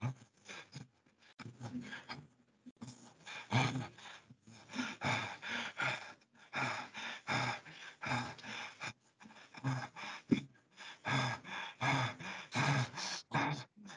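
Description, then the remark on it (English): Rapid, forceful breaths pumped in and out in a steady rhythm as a breathing exercise for about fourteen seconds, fairly loud, with a few brief pauses between bursts and no talking. “My good friend Achan Dhammavitu, in his advanced classes, actually teaches that kind of breathing and gets the students into doing it.”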